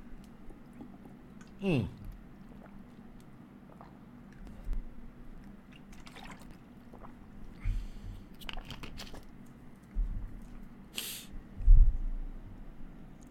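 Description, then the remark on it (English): Someone drinks water: quiet sips, wet mouth sounds and a few soft gulps spread over a low background hum, with a louder swallow near the end. “I'm going to take a little water break.”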